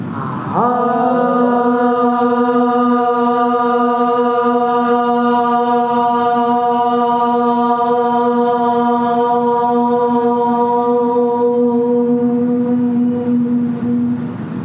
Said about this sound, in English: Share a moment of coming together to join our bodies in a breath. And the sound of Om.